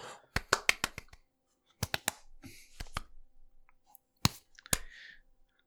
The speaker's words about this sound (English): Bravo, Wizards, for that. That's fucking smart. That's my clapping.